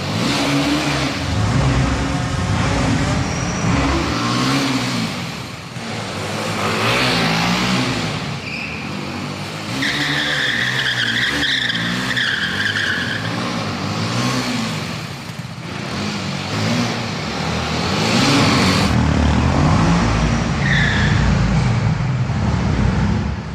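A BMW G310R roadster motorcycle engine revs hard and accelerates repeatedly, its pitch climbing and dropping in surges over a loud, continuous roar throughout, with no talking.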